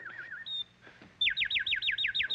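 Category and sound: vocal imitation, person imitating bird calls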